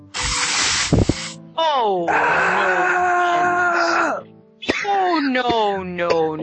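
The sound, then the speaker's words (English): A sharp burst of hissing noise opens, then a loud, sustained voiced scream with a wavering, strained pitch, a brief pause, and a second anguished screaming cry, all intense. “And you hear a sudden scream accompanied by a hiss.”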